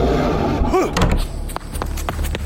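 A brief creak, then a door slams shut with a loud thud, followed by several lighter knocks and rattles as it settles, over a low rumbling background.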